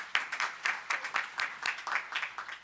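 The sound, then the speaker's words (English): A crowd applauds to thank volunteer helpers, many hands clapping in a steady, dense patter of sharp bright claps at moderate volume, continuing throughout with no voices over it. “Stand up if you help. Give them a clap. Tell them thank you.”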